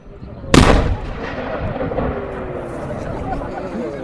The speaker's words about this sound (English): There we have it. The 1 o'clock gun has been fired for the umpteenth time in history. It's such a distinctive noise. And I tell you what, no matter how many times I hear it and see it go off, it really does give me goosebumps.